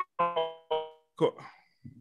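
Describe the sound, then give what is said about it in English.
A voice over a phone line cuts in and out, arriving as a few clipped, tonal fragments and a garbled burst separated by dropouts of silence. “your phone is breaking up, bro.”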